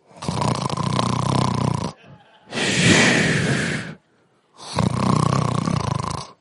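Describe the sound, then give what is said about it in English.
A voice imitates loud snoring: three long, rasping snores separated by short pauses, with no other talking. “That's some holy snoring right there.”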